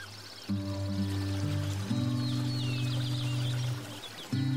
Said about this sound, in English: Allow your thoughts to float as the birds chirp.